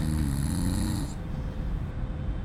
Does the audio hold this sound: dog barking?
no